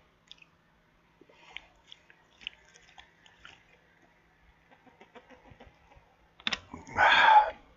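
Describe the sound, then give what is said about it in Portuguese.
Quiet wet mouth clicks and small smacking noises, then a short, louder slurping gulp near the end as the last sip of water is drunk and swallowed. “Bom, e olha, o último golinho de água, ó. Acabou.”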